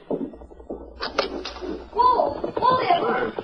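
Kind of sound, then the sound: household object, door being opened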